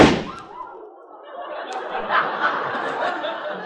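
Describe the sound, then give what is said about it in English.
An office door bursts open with one sharp, loud bang as a very large guitar enters, dragging a man behind it; then a sustained wash of scuffling noise and snickering, chuckling voices follows for a few seconds. “Just then, the door burst open, and a very large guitar entered the office, dragging a man behind it.”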